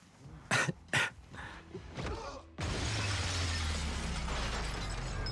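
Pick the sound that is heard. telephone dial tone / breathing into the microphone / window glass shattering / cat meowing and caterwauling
window glass shattering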